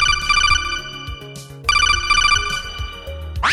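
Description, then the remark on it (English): A telephone rings loudly, a bright warbling ringtone sounding in two long bursts with a short gap between, no voices present. “And now let's go back to the phones.”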